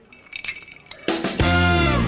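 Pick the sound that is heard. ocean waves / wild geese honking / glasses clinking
glasses clinking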